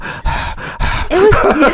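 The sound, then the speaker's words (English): A person imitates creepy heavy breathing on a phone call, three rasping, drawn-out breaths, the last rising into a strained, voiced groan. No words are spoken. “Was it someone breathing like...”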